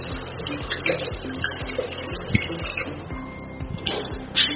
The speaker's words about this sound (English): So I'm adding the remaining one to it. Yeah. So I'm adding the remaining methanol.